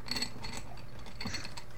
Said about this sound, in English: Do you hear that authentic dice jingle? Oh, so yeah. Good. This is some I artisan gaming.